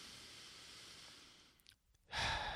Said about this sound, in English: I'm breathing in the scent of a Mrs. Meyer's Clean Day candle. I think it's a geranium flavor. What do we have here? Yep, geranium. Very floral.